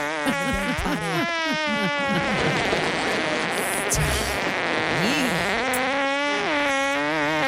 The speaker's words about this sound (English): Is this the world record? Gentlemen, that was a fart.